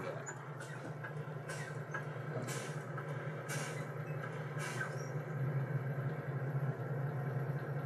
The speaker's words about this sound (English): Your compressor will engage. It will build pressure up between 120, 140 PSI, and it will kick out. You hear the sound.